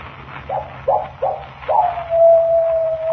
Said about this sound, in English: That is the second time. When the coyote howls three times, I die.